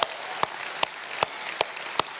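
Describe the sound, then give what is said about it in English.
A church audience clapping together on Resurrection Sunday, with sharp, steady claps landing on a regular beat over a dense wash of scattered applause. “And it's okay to clap our hands at that reality today.”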